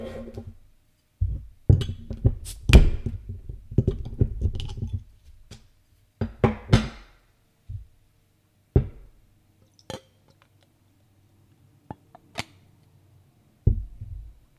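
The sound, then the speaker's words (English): A Samuel Adams Oktoberfest beer is poured from a 12-ounce bottle into a Spiegelau lager glass, with clinks and glugging bursts for a few seconds, then occasional sharp taps and a faint fizz in near silence. “I'm pouring this one from a 12-ounce bottle into a Spiegelau lager glass, which is perfect for this beer.”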